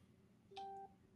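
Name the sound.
phone notification beep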